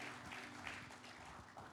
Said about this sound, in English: And let's give them a round of applause because they're really helping us a lot. Part of our awakening team here today.